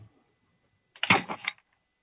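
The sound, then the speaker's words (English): A brief slide-change sound effect played by the Scribe for Meetings software, a bright, crackly swish lasting about half a second with a few quick pulses, heard alone after a stretch of near silence. “So as you can hear, Scribe for Meetings played a little sound effect to indicate that the slide changed”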